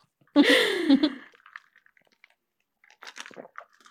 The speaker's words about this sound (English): Taking a sip of our liquids.